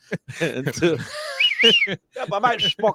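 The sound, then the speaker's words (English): Someone imitates a wolf whistle, a single quick sliding whistle in the middle of a few seconds of lively talking. “I had big legs and a big butt, and so I used to get whistled a lot.”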